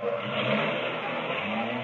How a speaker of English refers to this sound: Hey, Costello, is there another car driving in? Hurry up. See what they want.